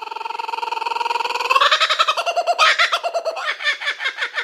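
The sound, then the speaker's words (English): A loud bird call sound effect with no voices: a rapid, buzzy trill of stacked pulses that shifts into choppier gobbling bursts for about four seconds. “All right, guys, slap the bird.”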